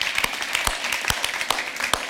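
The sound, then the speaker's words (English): An audience claps together for what God is doing in their pastor's life, a steady wash of applause punctuated by sharp, evenly spaced individual claps at a fairly loud, constant level, with no voices over it. “It was, yes, let's clap for that.”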